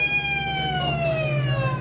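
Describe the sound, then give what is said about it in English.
An ambulance siren wails loudly, one sustained tone gliding slowly downward in pitch over a low rumble, with no voices. “Let the ambulance through. Move back now.”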